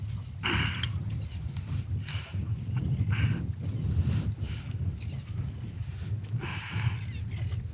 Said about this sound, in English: That other boat's coming back in too, there,